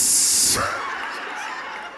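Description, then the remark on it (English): A Dasani water bottle cracks open with a sharp, loud fizzing hiss that lasts about half a second, then trails off into a softer, lingering rustle. “Yeah, open it up. Sound like a Sprite can.”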